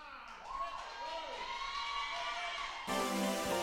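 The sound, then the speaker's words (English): A church audience shouts together, many overlapping voices with rising and falling whoops in a loud, steady roar; near the end a brighter, buzzy swell joins the noise. “I know you're shouting a lot in church today, but the shout is a sound of victory.”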